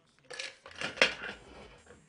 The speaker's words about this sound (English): First thing you want to do, so you shake it with ice, and you want to put, you love rum, right?